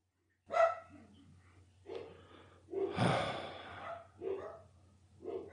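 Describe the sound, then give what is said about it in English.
Several dogs bark at a house in quick, irregular bursts, loud, with snorting and panting breaths between barks over a low steady hum. “if you're hearing the dog bark, let's let them all bark now”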